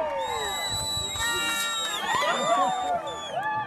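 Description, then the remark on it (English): A crowd at a mountain summit under bluebird skies, with a film crew, cheers and shouts excitedly while giving high fives, many voices whooping and calling over one another in a continuous, lively burst with rising and falling yells throughout. “There are bluebird skies and a film crew and a crowd waiting for him, high fives, cheering, and he pops the cork on a bottle of champagne.”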